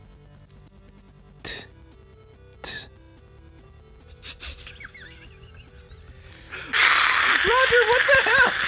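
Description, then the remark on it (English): A voice builds a loud, breathy hiss with squeaky, wavering tones, imitating a school bus door, after a few quieter clicks and breaths. “Yeah, you kind of gave me the, like, school bus door right there at the end.”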